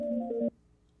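A brief electronic telephone ring for an incoming call to the Hoodstocks show, a half-second burst of steady paired tones that shifts pitch slightly before cutting off abruptly, leaving near silence; clear, with no voices.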